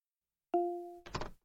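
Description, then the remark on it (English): A door-unlocking sound effect in an interactive audio puzzle game, as the north door into the study is unlocked: a sudden clear, steady two-tone chime that slowly fades, then a short burst of rattling mechanical clunks, with another thunk just starting at the end. “The north door is now unlocked, and you are now in the study.”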